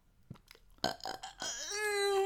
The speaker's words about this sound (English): Excuse me. I think, you want to take us out on that burp? Sure. Go ahead.